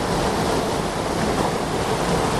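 A steady, dense roar of a rushing waterfall in Scotland in 2023, loud, with an unbroken hiss of falling water and no pauses. No voices are heard.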